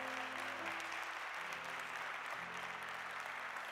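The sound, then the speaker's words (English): A large audience claps steadily as a hand clap of praise to God, a dense wash of hand claps filling the room, with a sustained low organ or keyboard chord shifting underneath. “Come on, let's now give God one more hand clap of praise.”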